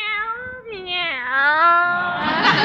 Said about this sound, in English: Meow, meow. Look at Minerva. She looks like the cat that swallowed the canary.